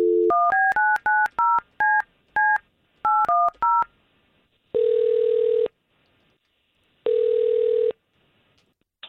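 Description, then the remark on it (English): A rapid string of about eleven touch-tone dial beeps, followed by two long electronic ring tones separated by silence, clear with no talking, as a phone number is dialed to call a woman. “We've got Tara's phone number, thanks to you, and let's see if we can't call her.”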